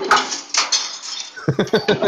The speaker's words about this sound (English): Jesus Christ, dude. What are you doing, dishes? Are you juggling bottles?